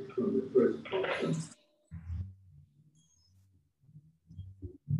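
heartbeat

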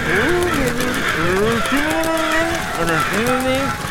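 birds squawking loudly

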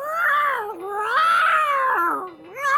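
cat yowling

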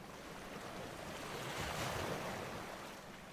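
ocean waves

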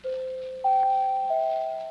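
doorbell chime

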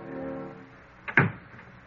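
door closing

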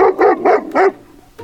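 dog barking

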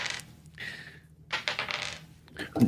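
dice being rolled

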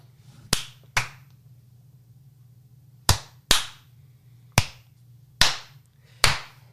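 rhythmic clapping

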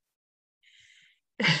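a person yawning

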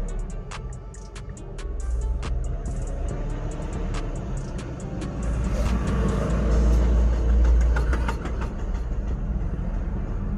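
car engine revving

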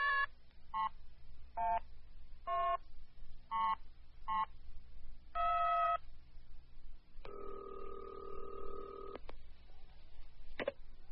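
telephone being dialed

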